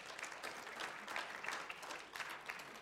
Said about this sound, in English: All right, give the dads a round of applause.